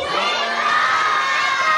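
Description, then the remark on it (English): A crowd of children shout "wake up" together in one sustained burst, loud and bright with many overlapping high voices blending into a steady, excited roar. “Readers, can you help me wake up Morin? Quickly. Yes. Everyone say, wake up with me on the count of three.”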